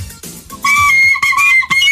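A tin whistle played badly, with shrill, wavering notes that break off and restart a few times. It is loud, with no talking.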